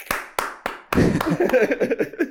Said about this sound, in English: With a crowd, you know, cheering me on at the same time.